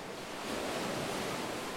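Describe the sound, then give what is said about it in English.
A steady, dense roar of surf in a natural sea cave, waves coming in through the cave mouth and crashing against boulders and rocks on the cave floor a couple feet below a wooden platform; a continuous wash of crashing water that swells slightly and holds loud throughout, with no voices. “Waves come barreling in through the mouth of the cave and crash against the boulders and rocks on the cave floor, a couple feet below the platform we're standing on.”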